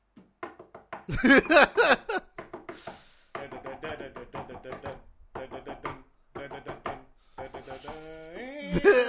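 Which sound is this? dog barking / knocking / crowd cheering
knocking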